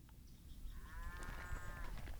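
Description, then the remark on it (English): A single drawn-out sheep bleat, wavering, rises over a low outdoor rumble of wind and open air on a 10,000-acre ranch running sheep and Red Angus cows near Gillette, lasting a little over a second before fading. “run Red Angus cows and sheep on this 10,000-acre ranch”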